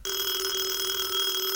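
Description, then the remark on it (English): A telephone rings with a loud, steady electronic tone that holds unbroken for the whole moment, with no voices over it. “I don't remember our phone number.”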